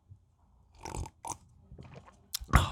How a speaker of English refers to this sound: Hold on, let me take another sip of tea.